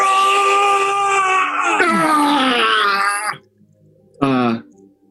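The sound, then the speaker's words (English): A person vocally imitates the character Crag screaming in agony and pain as something invades his mind, during a game played with dice: a long, strained, wavering cry lasting over three seconds, then a short pause and one brief pained yelp, loud. “Everyone, you look over at Crag, and you just see him scream in agony and in pain.”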